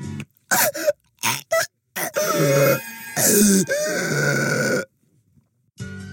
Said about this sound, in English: So many classics, such as Woman in Shower Getting Stabbed.